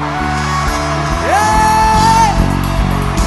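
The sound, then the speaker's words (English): A person lets out a loud shout that rises sharply in pitch, then holds a long, sustained high note for about a second over a dense, busy background. “Is shouting.”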